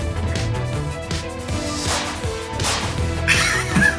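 A series of sharp whip cracks snaps out at irregular intervals over a dense, continuous musical backdrop, loud, with a bright burst of cracks near the end. No one speaks.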